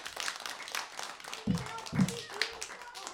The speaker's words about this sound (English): Clap for yourselves. You've been a great audience.